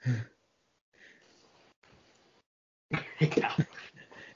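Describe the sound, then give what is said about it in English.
A big male dog whimpers: soft, breathy huffs and sighs with pauses, then a louder burst of whiny, strained whimpering near the end, with no talking. “And you found the dog.”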